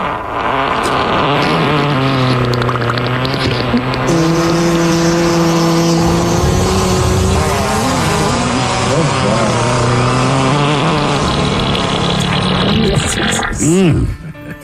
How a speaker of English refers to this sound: Could she get a fart montage and some wisdomness from …?